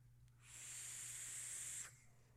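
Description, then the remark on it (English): A ceramic vape coil fired at high wattage gives a steady hiss lasting about a second and a half, then cuts off abruptly, with a faint low hum underneath and no talking. “The ceramic crackling at higher watts”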